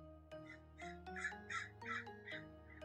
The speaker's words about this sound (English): Says the bird outside my window. That's an omen.